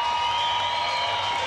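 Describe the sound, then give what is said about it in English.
A baseball stadium crowd at Hodgetown cheers in a steady, loud roar with the bases loaded, a dense wash of many voices holding at an even level for the whole moment with no single voice standing out. “The Hodgetown crowd is electric right now. Now this place gets loud.”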